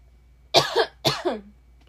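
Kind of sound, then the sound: human body sound, coughing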